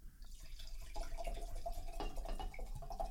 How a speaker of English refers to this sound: Here you go. I'll pour you another glass.